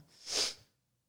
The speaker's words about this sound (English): Got the sniffles. It's all good.